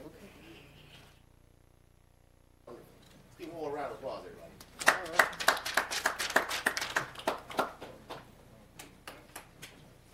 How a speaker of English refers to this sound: A round of applause, everybody.